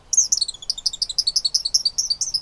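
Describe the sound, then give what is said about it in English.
Eastern kingbird calls: a rapid, steady series of sharp, high-pitched chirps and sputtering twitters, fairly loud, continuing throughout with no voices present, as the bird dashes out from a high branch to snatch a fly over the water. “An eastern kingbird dashes out from a high branch to snatch a fly over the water.”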